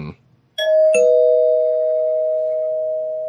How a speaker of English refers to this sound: But the low point for me was actually, and this is, I'll ring the spoiler bell. It doesn't really touch on a plot point, but I'll ring the spoiler bell.